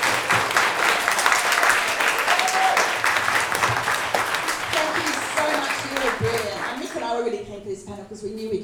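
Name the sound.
audience applause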